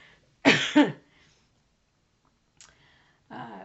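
Two sharp, loud coughs in quick succession from someone who swallowed wrong, followed after a pause by a brief throat noise and a rougher, raspy cough-like breath trailing off.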